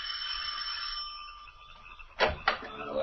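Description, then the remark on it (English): A doorbell rung by Clark Kent at the heavy oak door, up three stone stairs, of a house in the wooded countryside rings with a bright, sustained metallic chime that slowly fades over a second or so, followed by two short, sharp clunks. No one speaks. “Then, ascending the three stone stairs to the heavy oak door, he rings the bell.”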